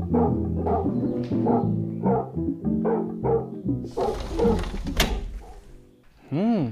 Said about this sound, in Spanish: Y parece que tienen un perro también. Sí, y creo que es un perro muy grande.